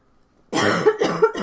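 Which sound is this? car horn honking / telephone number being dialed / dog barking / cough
cough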